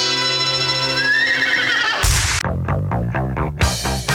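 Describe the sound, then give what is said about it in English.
A golden palomino horse whinnies with a rising, tremulous cry, then a quick run of loud, rhythmic staccato hoofbeats drums out in steady pulses over a sustained tonal backdrop. “The staccato hoofbeats of a golden palomino, carrying a man who fights wherever justice needs a champion.”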